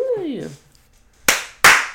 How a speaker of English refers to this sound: Ooh. Give myself a clap. You know what I'm saying? Because I represented my creator in the most top-notch way possible.